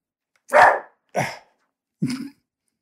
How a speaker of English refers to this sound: Lads, I'm recording. Some respect. Yes, and it's the local neighbourhood dogs are just having an exchange of views, it would appear. my apologies, that probably won't go out of the edits because these guys look as though they're set in for the night.